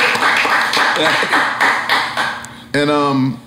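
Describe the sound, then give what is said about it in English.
A short burst of audience applause, dense and fairly loud with a rhythmic pulse, fades after a couple of seconds before a voice starts speaking. “You can clap for that.”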